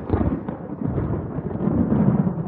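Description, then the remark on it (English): A loud, deep rumbling crash of thunder rolls on continuously, booming with no break and no voices over it. “As he went out, there was a clap of thunder, and he looked more than ever like the Demon King in a pantomime.”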